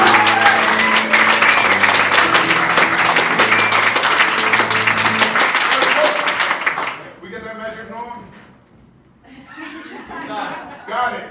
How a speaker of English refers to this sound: If you would, just your applause. Could we please have a little vignette that will remind you of I Am a Millipede and I Am Amazing. If that's your favorite, then you want to applaud now.